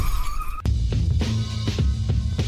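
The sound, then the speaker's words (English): A short high tire squeal gives way to a sudden loud crash, then a heavy rumbling stretch with scattered clanks and knocks, like a car skidding into a collision, in a radio ad for SueDistractedDriver.com about car accident injuries. “Injured in a car accident?”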